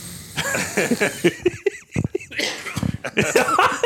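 A couple of short, sharp, unintentional coughs burst out, surrounded by breathy, laughing vocal sounds and murmured voices.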